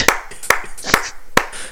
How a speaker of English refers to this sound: It sounds like somebody else is clapping. It does. It does.